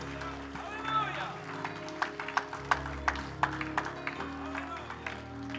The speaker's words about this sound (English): Would you give him another hand clap and shout of praise before you're seated?